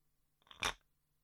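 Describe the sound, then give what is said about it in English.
A short rattling clatter of dice tumbling inside a tilted box, building quickly to one bright, crunchy burst and then fading out, with no voices. “Okay, it's like teeth rattling round in a skull-type vessel, something grim like that.”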